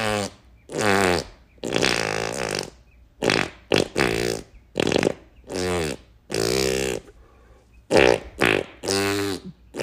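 A rapid series of loud, buzzy fart noises played as a song, roughly a dozen bursts of varying length and pitch, strung together in a rhythmic, melody-like sequence with short gaps between them.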